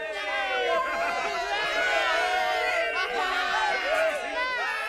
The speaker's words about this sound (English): Along the route, the streets were dense with well-wishers and fans, all cheering their hero.